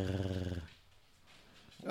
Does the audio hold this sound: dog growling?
yes